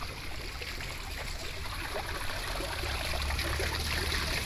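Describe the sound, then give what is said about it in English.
Steady splashing of water from an outdoor fountain by an old house, with spouts like cannons spraying water and coins dropped in it, a continuous bright hiss of falling water with a low rumble underneath, holding level throughout without pauses or voices. “I hear a fountain.”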